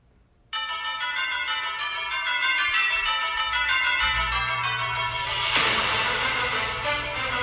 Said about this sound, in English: And with the classic podcast bells, we take you to another weekly podcast.